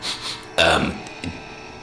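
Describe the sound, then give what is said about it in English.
A single loud fart, a short rough blast lasting about a third of a second, followed by a faint brief puff and near-quiet background. “Yes, I farted.”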